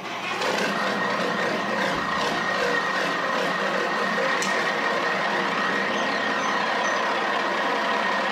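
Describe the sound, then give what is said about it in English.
A loud, steady rumble of a big truck engine running continuously, with a dense, gritty mechanical texture and a brief higher whine partway through, no voices present. “We got ready to jump inside my favorite segment right here, the big truck.”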